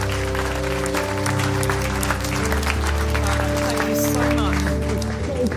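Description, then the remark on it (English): An audience claps steadily for several seconds, a dense, continuous patter of applause over sustained low musical tones, with some voices mixed into the crowd. “Let's give all these people a big round of applause.”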